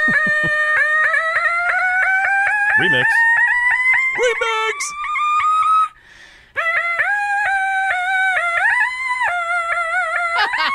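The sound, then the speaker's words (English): People doing the Car Alarm Challenge vocally imitate car alarms and a French ambulance siren by hitting their throats: a loud, steadily rising wail with choppy throat-pulsed bursts, then after a short break a run of warbling, pulsing siren patterns that keep switching. A voice briefly calls out. “This is some audio from folks doing the Car Alarm Challenge, which has taken over.”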